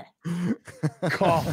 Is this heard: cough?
yes